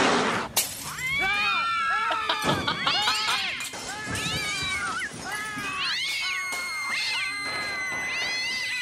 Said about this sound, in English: There was gunshots in the background there. That got pretty intense. Apparently that cat was carrying. I know, right? It's an angry kitty.